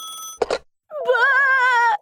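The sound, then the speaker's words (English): A cell phone rings with a loud, warbling electronic tone that holds for about a second after a brief steady beep and a short clatter, as someone fumbles to reach it, with no voices. “Miss Evelyn shuddered, fumbling to reach her cell phone.”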